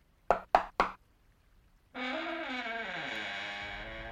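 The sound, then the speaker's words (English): Three sharp knocks on a door in quick, even succession, clear, followed after a pause by a loud sustained droning, harmonic tone that slowly shifts downward. “Like I told you, you only have to knock when I have a sock on the door.”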